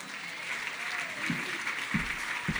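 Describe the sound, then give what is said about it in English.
Sustained applause from an audience at The Laborastory welcoming performer Lauren Bock, a dense steady patter of clapping with a few louder thumps and faint cheering underneath. “Please make Lauren Bock very welcome.”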